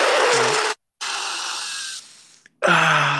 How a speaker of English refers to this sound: What was that? That was a good sniffle.